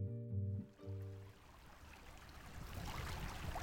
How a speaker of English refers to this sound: Mill Creek is back to a slow trickle this afternoon as tractors work nearby, adding to a person-high pile of mud.